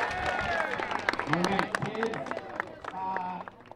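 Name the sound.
audience applause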